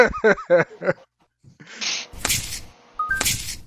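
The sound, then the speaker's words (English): A dog gives two short, sharp barks about a second apart, loud, after a brief stretch of a voice making vocal sounds. “We evidently are distracted by a dog.”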